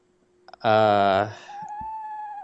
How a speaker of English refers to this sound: So that's definitely a bird. I'm gonna go. I guess it'd probably be an owl because Yep. it's like a who.